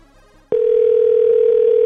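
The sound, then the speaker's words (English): A steady, loud telephone line tone starts abruptly after a moment of quiet and holds unbroken, a single pure pitch droning on without interruption. “I don't know why it's not ringing.”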